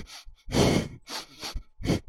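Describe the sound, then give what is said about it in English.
Heavy breathing: a series of five or so loud, airy inhales and exhales in quick, uneven succession, with no talking. “You're breathing all heavy.”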